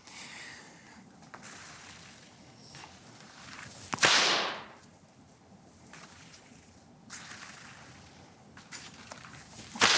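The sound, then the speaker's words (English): A single sharp whip crack as the tip of the whip reaches the speed of sound, a sudden, loud, bright burst that quickly fades, followed by quieter rustling and faint movement noises. “This is a demonstration of the speed of sound achieved by the tip of this whip.”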